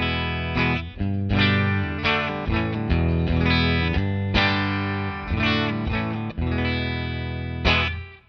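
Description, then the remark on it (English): A clean electric guitar played through a Fender Deluxe Reverb amp on its normal channel, with no effects on, plays ringing chords alone, struck in a steady rhythm with sustained notes blending between strums, fairly loud, with no voices. “Okay, so I have changed to the deluxe reverb. I'm on the normal channel because it actually works a little bit better with pedals, I think.”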